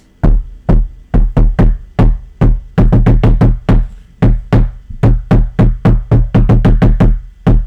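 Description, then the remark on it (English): A long, intricate secret knock for entering a treehouse: a rhythmic pattern of loud knuckle knocks on a hard surface, with quick clusters, short pauses and changing tempo, played without any talking. “The knock. I don't want to knock on your tablet, so I gotta move it a little bit.”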